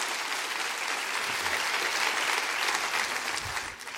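An audience claps their hands in praise during a sermon, sustained, dense applause, many people at once with no clear rhythm, steady before tapering slightly at the end.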